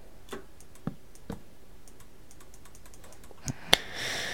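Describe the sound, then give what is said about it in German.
Scattered computer keyboard key presses and sharp computer mouse clicks, fairly quiet, irregular taps spread over a few seconds with a louder click near the end. No one speaks. “Ich hoffe, man hört jetzt meinen Computer oder mich oder meine Tastatur oder meine Maus hier nicht zu doll.”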